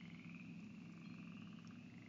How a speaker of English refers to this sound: So after that, I just parked beside the road. And it was such a beautiful evening. The chorus frogs are singing. I'm going to shut up for a second. Maybe you can hear them now.